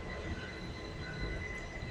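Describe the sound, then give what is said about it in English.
A train rumbles steadily past, its wheels letting out a sustained metallic squeal with high ringing tones over a broad, continuous low roar. No one speaks. “There's a train in the background.”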